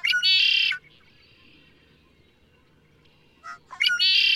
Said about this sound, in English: Blackbird songs have a strange music. The red-winged blackbird can be heard in nearly every marsh on the continent, bold, brassy, and piercing. The songs may not seem terribly musical, but they definitely get your attention.